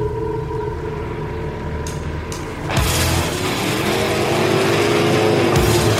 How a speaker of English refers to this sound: Today, that's the roar of Detroit's finest, circa 1959 and before, of course. American dream machines tricked out, babied, pampered, jury-rigged, or simply held together with duct tape and baling wire.